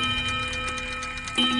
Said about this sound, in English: Haunt number 9. The Dance of Death. Every clock in the house strikes midnight.